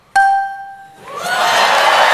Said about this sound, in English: Did the guy just now realize, crap, I'm supposed to hit this bell.